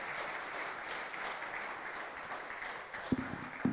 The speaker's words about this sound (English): Thanks. Cool. Send me a clap, eh? Yes, please.